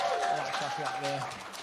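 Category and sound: crowd, round of applause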